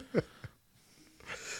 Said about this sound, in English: Did you sneeze? What happened?